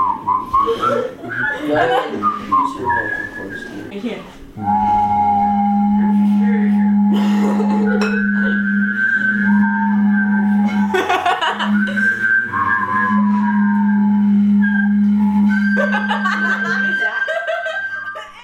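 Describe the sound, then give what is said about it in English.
Brief laughter opens at an evening gathering, then a person wums, humming and whistling at once: a steady low hum drones continuously while a higher whistled melody glides and shifts above it at the same time, both sustained and fairly loud for over ten seconds. “You hum at the same time that you're whistling.”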